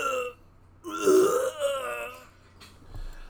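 A man vomiting into a nearby trash can: a short guttural heave, then a louder, longer gurgling retch that trails off into quieter throaty sounds. Nobody speaks.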